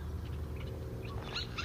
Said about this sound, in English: I love those great-tailed grackles